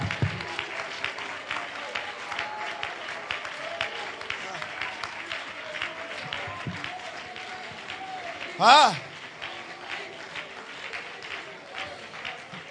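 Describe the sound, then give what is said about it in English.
An audience claps steadily and densely throughout, with cheering voices mixed in and one loud, pitched whoop rising briefly above the applause near the end. “If you're expecting, clap your hands.”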